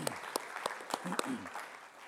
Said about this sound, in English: Give it another applause to that. Would you do that? Amen.